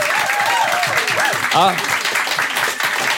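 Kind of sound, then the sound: crowd, audience applause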